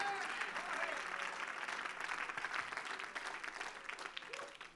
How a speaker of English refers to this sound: Come on, if you love that truth, clap your hands unto God.